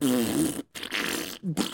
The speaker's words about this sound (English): then there's like these thunderous farts as the title Rectuma descends onto the screen